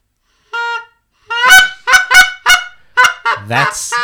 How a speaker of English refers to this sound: That's a Canadian goose. Yes, Canada goose. Very good.